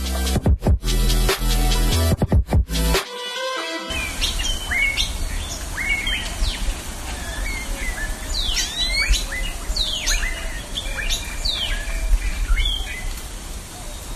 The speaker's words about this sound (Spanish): Esto que acabas de escuchar son las aves de Soyaché, y es uno de los tantos sonidos que actualmente integran el Mapa Sonoro de México